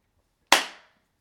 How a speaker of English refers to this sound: That clap is to help with my sound editing. Somebody told me I needed to do that, like make a clap. So you can see it visually on the little sound screen when you're editing.